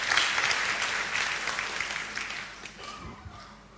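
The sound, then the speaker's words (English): An audience breaks into steady, dense applause, many hands clapping at once; it stays strong for a few seconds, then thins and fades toward the end. “And that should be saluted, applauded, and thank God that they have.”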